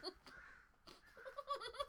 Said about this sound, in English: Goddamn birds! Guys, I don't know if the microphone is actually picking this up, but... Not only, we always have a lot of crows in this neighborhood.